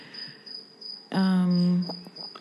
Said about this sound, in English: There's a cricket that lives under our washing machine, and our house is all concrete, and it just echoes. So you're going to be getting all of it.